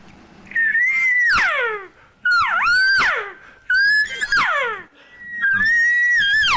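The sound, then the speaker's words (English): Four drawn-out, whiny elk cow lost calls blown on a handheld call, each a loud, nasal mew that rises then breaks downward, repeated in quick succession with short pauses between. “It's just really sending out. It's like, hey, you know, it's like just like you guys, man. When where'd y'all go? And you're lost, man, and you need somebody, and you're like.”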